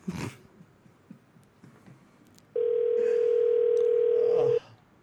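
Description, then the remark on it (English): A telephone line rings once with a steady, loud electronic tone lasting about two seconds during a prank phone call to Victoria's Secret at Hollywood and Highland, over a quiet background with a brief soft bump at the start. “Still making prank phone calls.”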